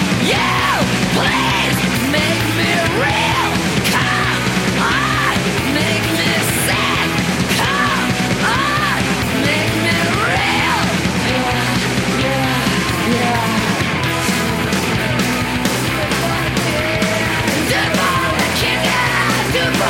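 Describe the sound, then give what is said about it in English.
A woman screams and wails in a song over loud, dense instrumentation, her strained vocal cries rising and falling continuously across the whole passage at full volume. “But her voice, man, when she screams, like, you can't get a scream like that.”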